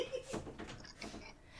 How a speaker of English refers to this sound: Hold on, my friend is going to open my door and it's going to make a sound.